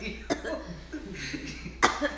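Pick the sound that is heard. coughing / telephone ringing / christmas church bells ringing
coughing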